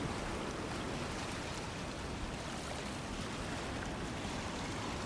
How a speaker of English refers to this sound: This is ocean water in Moloa'a Bay, Kauai, at a time of receding tide, swishing and gurgling over depressions in the reef.